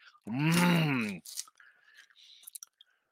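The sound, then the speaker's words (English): A loud, drawn-out hum of enjoyment gives way to close, wet chewing on Sour Patch Kids gummy candy right at the mic: soft smacks and sticky clicks in an uneven rhythm. “We got Sour Patch Kids. Look at this. I'm going to chew right in here, right in the mic for you.”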